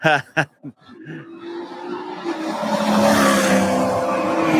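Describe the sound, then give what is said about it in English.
A gray race car ahead of a green race car roars closer on the track, the engine whine building in pitch and volume until it fills the scene, preceded by a brief burst of voices or laughter. “That might actually be you driving that car,”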